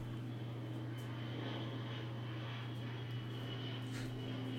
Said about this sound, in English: No, it's the prop. It's the prop. ATR. The jet is still not working.